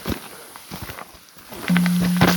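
Crunching footsteps shuffle along a cow trail in the woods, then a comically large pink water bottle gives off a low, steady ding that rings on for nearly a second, louder than the steps, with no one speaking.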